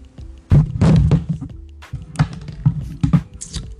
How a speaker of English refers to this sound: Sorry guys, I knocked over my microphone.